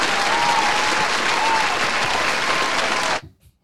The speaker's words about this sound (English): Gotta calm them down. They'll clap forever, goddamn.